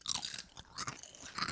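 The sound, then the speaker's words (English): Loud crunching of sweet potato chips by three people, several overlapping bites in quick succession with crisp, crackly bursts and no talking. “Let's all three do the final crunch.”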